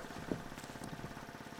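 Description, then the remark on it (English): A boat motor runs steadily at a low idle, a quiet, continuous chugging rumble with an even pulse, in a harbor, with no voices. “What's that noise? I don't know. A motor? I'm not sure.”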